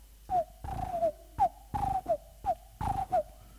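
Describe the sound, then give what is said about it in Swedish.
A dove coos in a steady, repeating pattern: soft, low, throaty notes grouped in short phrases, with no talking. “Det var en duva som satt och tittade på Jesus.”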